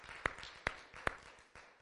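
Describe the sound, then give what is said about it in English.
Hand claps of praise to God at an evening church service, in a steady rhythm: three sharp, bright claps evenly spaced, then a softer fourth, over a faint murmuring background, like a group clapping together in time. “Let's give him another hand clap of praise tonight.”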